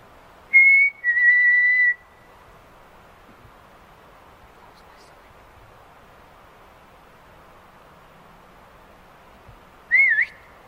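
A person whistles outdoors on a trail: two clear sustained notes, then a long quiet stretch of faint ambient hiss, and finally a short rising whistle near the end, fairly loud.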